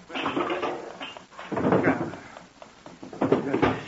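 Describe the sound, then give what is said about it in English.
A drawer is pulled open and rummaged through to take out a noisy clock, with three bursts of wooden scraping and rattling separated by brief pauses. “I take it out of that drawer.”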